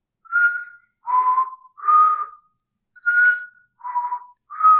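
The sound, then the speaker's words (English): A person whistles a short tune of six clear, sustained notes grouped in two phrases of three, with a brief pause between them, moderately loud with no talking. “Yeah, whistling was very frequent in this movie.”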